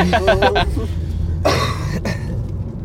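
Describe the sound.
A few short voiced sounds are followed by a harsh, raspy cough burst and then a second briefer one, over a steady low hum in the background.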